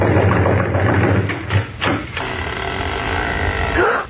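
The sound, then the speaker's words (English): A few loud, heavy bangs on a house door land in quick succession over a steady low hum, followed by a drawn-out, wavering creak that fades toward the end as the door, its latch loose, opens. “The latch was loose and the door opened when we banged on it.”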